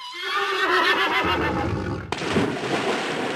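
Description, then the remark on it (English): A pony lets out a loud, quavering whinny that rises high and trembles for about two seconds, then cuts abruptly into a rough, noisy rush of sound. No one speaks. “Music that comes with this pony sucks.”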